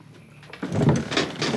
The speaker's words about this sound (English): And he relocks the door and nails it back shut.